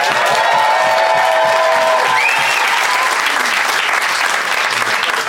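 Sustained, loud audience applause given as a vote for one side of a debate, a dense wash of many hands clapping with a few cheers and whistles rising over it, steady throughout before easing slightly at the end.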